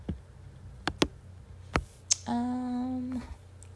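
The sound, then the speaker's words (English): A handful of sparse, crisp keyboard key taps at uneven intervals as someone types while talking, followed by a short steady tonal hum lasting under a second. “So I'm typing and trying to talk at the same time.”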